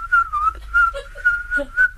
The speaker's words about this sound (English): What is that? That's me whistling. Oh, I thought it was an insect.